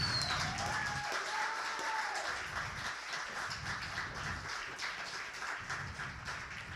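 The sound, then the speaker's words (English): A crowd applauds steadily for several seconds, a dense wash of many hands clapping at once, with a few whistles rising above it near the start; the audience at a poetry slam applauds the poets who performed. “But before I do, I would please like for all of you to give another round of applause to the people that slammed tonight.”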